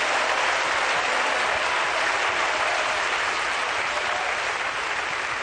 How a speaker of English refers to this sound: If you believe that, clap your hands and lift your voice to the Lord. Give God praise and thanks.